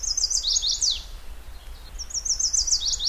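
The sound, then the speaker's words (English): A male songbird sings its mate-attraction song: two bursts of rapid, high-pitched chirping phrases separated by a short pause, the notes clear over a low background rumble, with no voices. “Those last two syllables, the wheat you, is louder than the introductory part of the song.”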